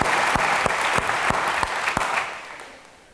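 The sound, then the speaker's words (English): An audience claps steadily for a few seconds in applause for single moms, a dense wash of applause with a few sharper individual claps standing out, fading away toward the end. “Liquid applaud for single moms.”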